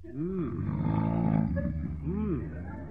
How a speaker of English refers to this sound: Boy, snore away, will you? Wish he'd roll over so as I could see his face. Maybe I better wake him up before he scares himself to death.